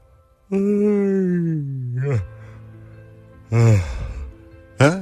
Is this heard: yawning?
yes